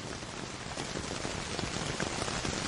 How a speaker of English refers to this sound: Meditation is hard, and if it's about clearing your mind, then maybe hearing raindrops on canvas is just what you need. Certainly distracting.